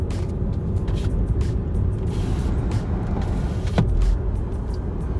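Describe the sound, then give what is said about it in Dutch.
A steady, loud rumble of motor vehicle engines rolls past without a break, swelling briefly near the end as one vehicle passes with a short rising whine. “Jezus, die motoren.”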